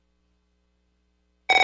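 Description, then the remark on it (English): After a long silence, an electronic telephone ring suddenly starts at the very end, a bright warbling trill with rapid pulses, loud, cut off almost immediately. “If fear strikes your heart when the phone rings, knowing it may be another bill collector,”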